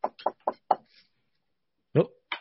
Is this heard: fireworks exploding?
no